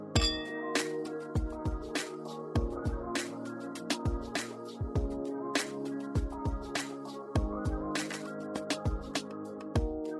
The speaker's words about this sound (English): Should we cheers? Yeah.